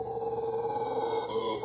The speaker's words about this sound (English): This next one says the jungles of Costa Rica produce some terrifying noises. Is that a howler monkey?